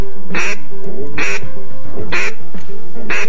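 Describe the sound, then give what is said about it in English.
A gadwall duck calls four times in a steady rhythm, each quack a loud, raspy, nasal burst, with short pauses between calls and no talking. “Gadwall.”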